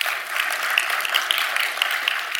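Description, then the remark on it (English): Steady applause from a crowd, many hands clapping at once in a dense, even crackle that holds at a constant level for a couple of seconds with no voices over it. “What I love from the text, go ahead, that's a good hand clap moment.”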